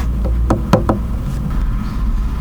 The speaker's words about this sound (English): Yeah, I think he's always waking up, but this time he'll get up and knock on the door of the bathroom.